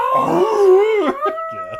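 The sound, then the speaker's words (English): A person imitates the roar of a character turning into a demon-like monster: one loud, drawn-out guttural growl that swells and bends in pitch, then breaks off into a couple of shorter rasping bursts. “And then he lets out the monster roar.”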